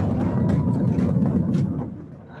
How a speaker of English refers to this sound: One of these planned implosion demolition. I'm cheering. So that was, let's see, 26 seconds? Yes. Now there's going to be some cleanup afterwards, but the idea is you can tear down this huge building in half a minute.